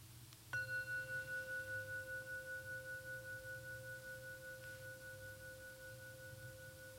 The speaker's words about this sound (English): We'll hear a final bell, and you can open your eyes.